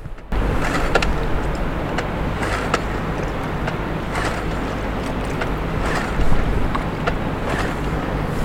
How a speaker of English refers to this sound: Huh. Love that sound. Let's see if we can get a bit more of that sound of the water on the beach there, over there.